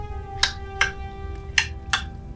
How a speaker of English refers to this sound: Like, then you hear the sound of the clock.